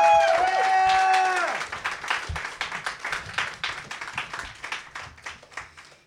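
A round of applause: dense, irregular hand claps that keep going for several seconds and slowly thin out, opening with a brief sustained tone that trails off as the clapping builds.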